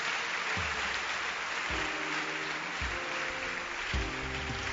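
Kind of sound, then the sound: crowd, audience clapping hands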